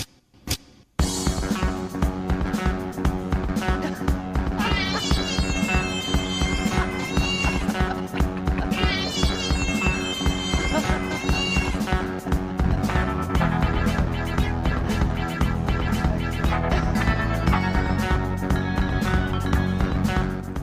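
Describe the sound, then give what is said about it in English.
A cat's piercing shriek is synced with a loud, driving rock song, rising twice as long, wavering, high-pitched cries over the pounding band before the music carries on alone. “What we did do is put together what it sounds like when you sync a cat's piercing shriek”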